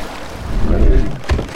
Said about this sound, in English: While stargazing, a massive gust of wind passes over Griff, causing him to stumble.